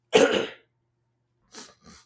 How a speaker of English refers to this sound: Ooh, I had to get that cough in.